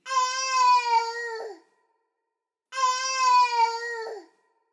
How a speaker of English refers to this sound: But bush babies also have the most terrifying, piercing scream, which sounds similar to someone boiling a baby.